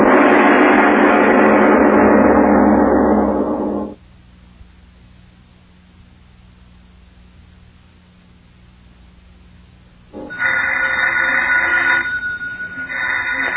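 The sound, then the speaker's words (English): A telephone bell rings loudly in two long bursts separated by a few seconds of quiet hum, with the second ring starting near the end. No one speaks. “answer the phone, please.”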